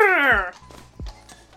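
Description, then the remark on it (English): A voice imitates a spooked horse: one short, loud, wavering whinny that slides downward in pitch. A couple of dull low thumps and quiet room noise follow. “you know what they say about horses? They go... the spook noises”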